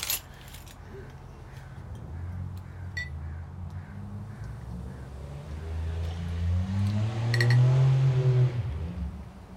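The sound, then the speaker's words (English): Honey-coloured beer pours steadily into a glass, the gurgling tone rising in pitch as the glass fills, with a few light glassy clinks and taps near the start. “Let us pour.”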